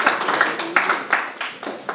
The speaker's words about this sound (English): Thank you. All right, God bless. Thank you. Wow, applause.